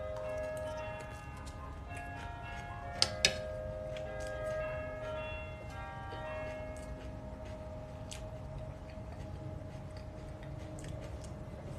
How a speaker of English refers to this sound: Well, the bells are going. Let's try to hear the bells as I eat.